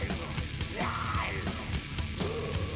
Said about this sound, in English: You got a great fucking yell, man.